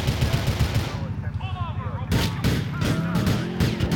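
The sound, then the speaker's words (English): Rapid, steady bursts of video game gunfire rattle throughout as a cop shoots at a car driving past, growing sharper and louder halfway through, with faint wavering voice-like tones underneath. “I think the cop shot me as we were driving past.”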